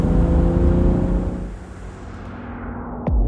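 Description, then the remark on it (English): A car engine drones loudly and steadily from inside the moving car, which has leather seats, its low rumble easing slightly midway before a brief rising surge near the end. No one speaks. “The longer I drive the car Callum gave me, the more it feels wrong.”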